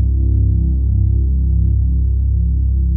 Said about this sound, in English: So stark. The loud hum of the machine as it moves him out of the scanner.